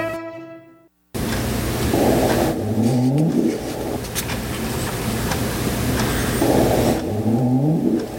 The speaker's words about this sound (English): That, my friends, is the sound of a right whale. A right whale is a whale that we don't hear much about in this area simply because there are very few of them. There are only about 400 in the North Atlantic